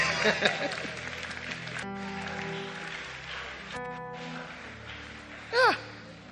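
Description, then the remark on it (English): An audience at a church service claps hands in a dense, steady wash throughout, with sustained keyboard or organ chords underneath and a short, loud rising cry near the end. “If you are clapping your hands, clap your hands.”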